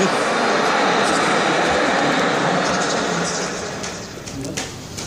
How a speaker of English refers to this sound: So, here we are at the end of the evening, and we're sat here at Tower on the Hill train station, waiting to get back to Aylesbury, and it's been quite an eventful evening, hasn't it, really?